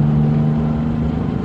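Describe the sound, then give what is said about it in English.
A bus engine revs with a loud, steady low drone and humming tones at a stop in Santa Cruz as passengers board, continuous for the whole moment, with no voices. “No smoking at any time while you're aboard the bus”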